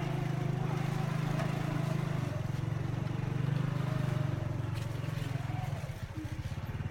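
A motorbike engine drones loudly, holding a steady low rumble with faint rattles as it carries a rider and passenger up a narrow, very steep mountain road, then settles into a throbbing, pulsing idle-like beat near the end.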